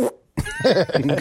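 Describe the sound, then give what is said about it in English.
A short burst, a brief silence, then a raspy, sputtering fart sound-effect drop with a wobbling pitch that lasts about a second, fairly loud, played right after someone says "stay king". “How about, can you say I'm going to stay king and then do a fart drop right after?”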